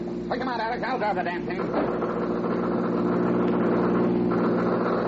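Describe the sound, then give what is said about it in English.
A car engine roars steadily at high speed during a chase as the driver tries to get more speed out of the car, a loud, continuous drone that holds its pitch throughout, with a brief muffled voice briefly rising over it near the start. “I can't get any more speed out of this thing than he did.”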